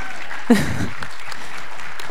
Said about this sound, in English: Before we do, can you just let me know, was this helpful? Was this encouraging? A round of applause, a yes, something?